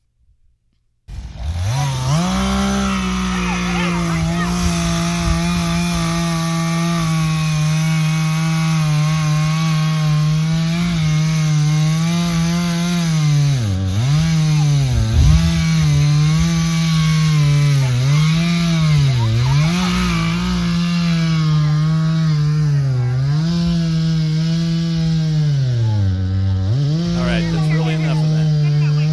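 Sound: chainsaw cutting wood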